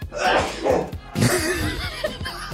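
A sharp sneeze bursts out midway, framed by breathy chuckling and vocal noises before and after it.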